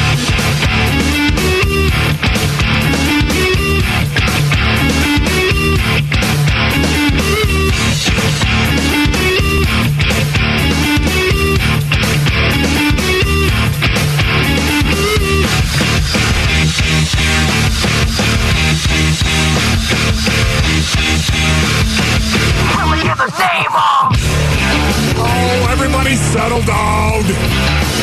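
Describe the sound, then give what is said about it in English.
A loud rock song plays on its own in the Arizona Sports radio studio during the Wolf and Luke show, with a driving drum beat and dense full-band sound, cutting out for a moment near the end before crashing back in. “No, sounds like this is what they play in a frat house.”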